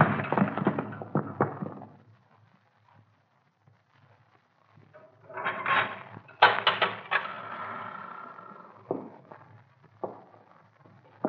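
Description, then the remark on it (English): A cupboard door with no lock thumps shut, then comes a scrape and a scattered clatter of wood and metal as a knife is jammed into it to hold it shut, fairly loud, with no one talking. “Hey, there ain't no lock to this here cupboard door. Lock it. Drive something in there. Here, this knife.”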